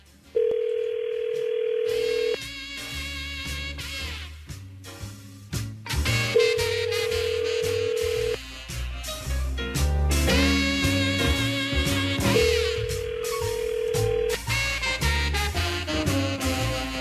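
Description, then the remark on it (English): A phone call placed to a guest rings out unanswered, three long steady ringback tones spaced several seconds apart, with busy music playing underneath throughout. “You weren't there to answer the phone.”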